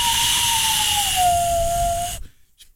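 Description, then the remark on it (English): A breathy whistle blown through cupped hands: one low, hollow tone held for about two seconds, sliding slightly downward under a heavy rush of air hiss, then stopping abruptly. No one talks. “That's, I guess, whistling through your hands.”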